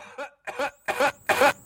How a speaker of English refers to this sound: And I hear this incredible echoed cough.